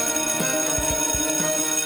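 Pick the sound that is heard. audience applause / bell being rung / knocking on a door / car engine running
bell being rung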